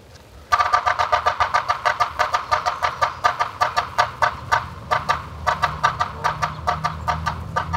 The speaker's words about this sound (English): The Morse code of the yellow-bellied sapsucker is less regular than the drum of other woodpeckers, and its call note is harsh.